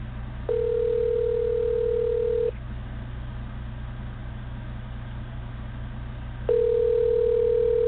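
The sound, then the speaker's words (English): An outgoing phone call's ringback tone on a call to Alex Jones's cell phone: a steady electronic tone sounds for about two seconds, falls silent for several seconds, then starts again, over a constant low rumble like a car interior. “Okay, we're calling Alex Jones now.”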